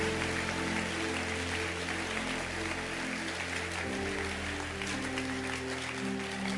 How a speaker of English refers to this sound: My dear friend, if God invites you, can you clap your hands for all those who came? Clap your hands for them. Outside, clap. Outside, clap. Everywhere, keep clapping your hands.